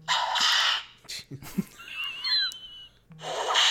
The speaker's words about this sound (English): Oh, that one got some lasso whirl in it. They got one titled Indie Whip.